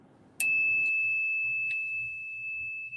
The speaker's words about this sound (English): Yeah, that's the bell, man. Like, see, look. I like that. Like, so you have this one. This is the regular bell, right? That's the old one that was on it.